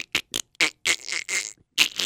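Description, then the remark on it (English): A boat engine, just put in the water at a ramp, cranks as the key is turned but fails to catch because the battery is dead: a string of short, rough sputtering bursts, several quick ones followed by longer grinding churns, then a final burst that dies away. “You turn on the battery switch, you turn over the key, and you hear that funny sound.”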